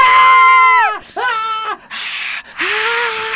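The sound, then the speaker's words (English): A voice imitates a roaring crowd: a long wavering cry that slides down in pitch, a second shorter cry, then two bursts of loud, breathy hissing like cheering. “And the crowd roars.”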